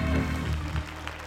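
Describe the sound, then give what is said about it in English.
A crowd claps together, a steady wash of many hands with a few sharper individual claps standing out, moderately loud and brief. “If he gave you hands, clap your hands. All your people.”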